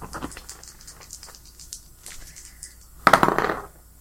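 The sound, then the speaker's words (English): A few light scattered clicks, then a sharp burst of rattling clatter lasting about half a second as dice tumble and settle on a hard table. No one speaks. “This dice is, like, stuck on 90.”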